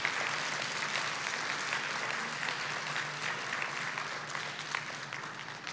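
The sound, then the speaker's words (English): An audience applauding the fathers who stand up among them, a dense wash of many hands clapping at once that holds an even level for several seconds, loud, with no clear voices on top. “Yeah, clap for them.”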